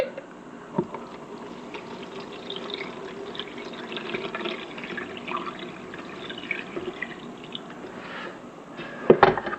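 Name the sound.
drip coffee maker brewing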